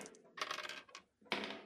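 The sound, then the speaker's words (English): Two dice clatter and tumble across a hard tabletop in quick rattling bursts, fairly loud, with a short pause before a final skittering roll; the dice are rolled as a reroll of a skill roll. “Let's give that a reroll with two dice.”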